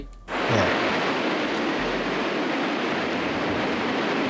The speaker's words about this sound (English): Yeah. I hear rain.